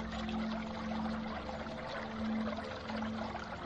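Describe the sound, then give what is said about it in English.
Water bubbles and gurgles continuously on the surface of a vast swamp, a busy, dense burbling with a low steady hum running underneath, moderately loud, with no voices present. “It is they who make the water bubble on the surface.”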